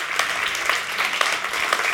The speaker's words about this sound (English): Come on, clap your hands.